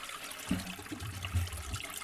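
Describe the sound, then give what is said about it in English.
A toilet flushes with a steady rush of swirling, gurgling water, moderately loud, running continuously for a couple of seconds with no voices. “Stuff that gets flushed down the toilet that we think just magically disappears.”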